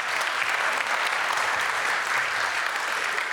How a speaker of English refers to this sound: Give that person and give the Lord a clap, you know.